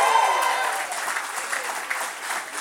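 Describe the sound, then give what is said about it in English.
A church audience claps and shouts together in a sustained, dense burst of applause with excited voices mixed in, steady and fairly loud throughout, during a morning worship service. “Give him the biggest shout and hand clap you give him all morning.”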